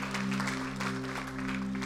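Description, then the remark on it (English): A church audience claps steadily in sustained applause to thank the praise and worship team, a dense patter of many hands, with a low hum running underneath throughout. “And so let's just give them a round of applause and just thank them again for what they did.”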